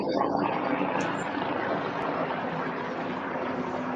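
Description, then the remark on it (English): A helicopter drones overhead, a loud, steady, rumbling roar that stays continuous for the whole stretch without fading. “You got a chopper flying overhead?”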